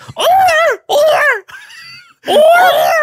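A person screams loudly in three long, wavering bursts, with a thinner, quieter cry between the second and third.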